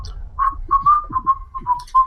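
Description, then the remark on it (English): Someone whistles a casual, wandering little tune while walking casually into a shop: a string of short, clear notes at a fairly steady pitch, with faint low rumbling underneath and no talking. “So walk in, whistling.”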